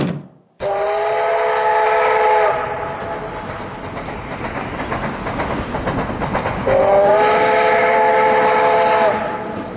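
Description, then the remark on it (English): A train travelling from Sacramento to San Francisco rolls along with a steady, loud rumble and clatter, its horn sounding two long, chord-like blasts, one near the start and another near the end. “Next morning in Sacramento, I boarded the train for San Francisco”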